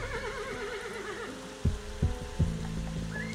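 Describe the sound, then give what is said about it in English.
A horse whinnies with a wavering, trembling neigh, followed by three heavy thumps like hooves or knocks, all set over a low, steady hum. “You see a horse in the back. Ghost horse.”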